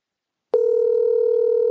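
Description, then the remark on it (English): A steady telephone tone, played through a phone held to a microphone, switches on abruptly after half a second of silence and holds one unbroken, loud pitch to the end, with a slightly buzzy, handset-like quality. “I have the phone held to the microphone.”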